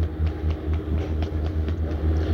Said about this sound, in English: The plane you can hear now is about 300 yards away, just warming up.